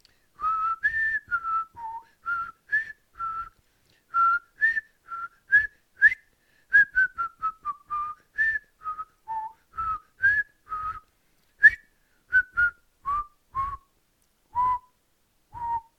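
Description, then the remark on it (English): Someone whistles a familiar quiz-show think music alone, a clear tune of short and held notes stepping up and down at a steady, unhurried pace. “We don't have Jeopardy music, but I'll wait. I'll wait. Maybe I'll whistle it.”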